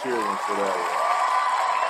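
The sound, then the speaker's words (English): A short burst of applause and cheering sound effect, played in tribute to guest Wayne McCullough, with steady dense clapping and excited voices whooping over it at first, loud and sustained for the full two seconds. “We got to make the cheer one for that one.”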